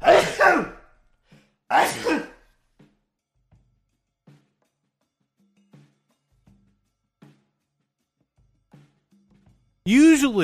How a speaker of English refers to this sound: Usually they don't come on that fast. I sneeze quite frequently and quite often during this stream, but usually I have a little more warning and don't just do it like that.